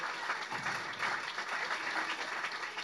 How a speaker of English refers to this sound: Hey, we talked about rounds of applause. We got to hit it up for her.